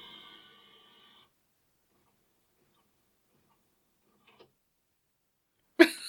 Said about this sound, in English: Oh my god. What the fuck? Like, why did the printer just do that? I don't know.